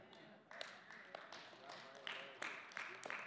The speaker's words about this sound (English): This is a pretty lame clap.